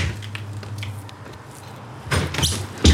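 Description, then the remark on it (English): The door of a ground-floor flat in a squat apartment block is pulled open with a latch click and a scraping rush of movement, ending in a sharp thump, over a low steady hum with no voices. “The door opens.”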